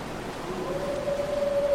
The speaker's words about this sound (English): Oh, there's wolves in here.